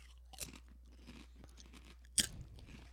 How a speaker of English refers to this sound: What do you think about the crispiness? I mean, it's a pretty good crunch.